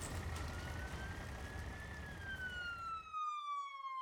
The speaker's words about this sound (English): In the distance, another siren was getting closer.